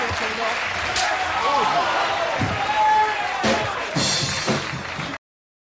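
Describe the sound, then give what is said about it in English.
A sharp, loud slap, wrestler Jerry "the King" Lawler hitting comedian Andy Kaufman on David Letterman's show, cracks out over a roaring crowd, followed by a couple of quicker smacks, with shouting voices blending into the constant crowd noise. “That was a short clip of Jerry the King Lawler slapping the taste out of the mouth of Andy Kaufman.”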